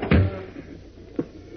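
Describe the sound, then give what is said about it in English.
A cabin door swings shut with a solid thud, followed by a quieter knock and then a sharp click about a second later as the door is locked. “Lock this cabin door before any of the mob gets here.”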